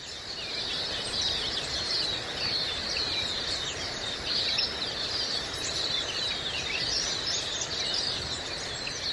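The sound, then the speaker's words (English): A dense outdoor chorus of birds chirping and trilling continuously at a steady level at Jindabyne, Australia, many calls overlapping against a constant background hiss, with no voices present. “Are you going to use my bird recordings for the introduction?”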